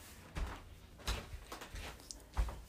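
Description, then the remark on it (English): A door is opened for arriving people and shut, with a few soft thuds and rattling knocks spread over a couple of seconds, fairly quiet and without any talking. “Let me open the door for the people.”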